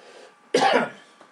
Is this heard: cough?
yes